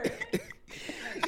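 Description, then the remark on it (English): A sick person gives a few short, sharp coughs in quick succession, fairly loud, with brief pauses and throaty breaths between them and no talking. “You know, trying to keep the coughs down.”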